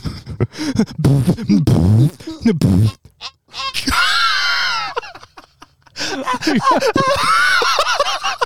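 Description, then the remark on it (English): Loud, high-pitched screams in two long bursts, each lasting over a second, shrill, following a few seconds of lower, choppy vocal sounds. “It sounded like a scream.”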